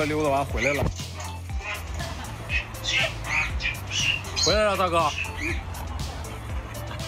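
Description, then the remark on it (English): A dog barks in a few sharp, yelping bursts, two of them standing out strongly against a busy, noisy background with other voices and squawk-like cries. “And this dog can give you a paw as well as play a game of volleyball.”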